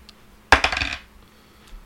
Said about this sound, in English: Actually, here, roll for perception real quickly. Oh, dirty dice.